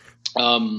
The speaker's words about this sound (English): That they've put out for me, because I'm about to yawn.